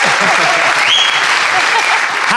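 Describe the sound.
Sustained applause from a festival audience voting on which side of an argument is right fills the whole moment, a dense, steady wash of clapping with a few faint voices and whistles rising through it.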